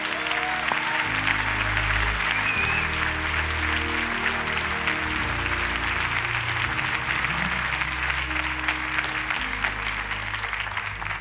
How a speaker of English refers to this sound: Everybody who receives this word, give God a hand clap of praise.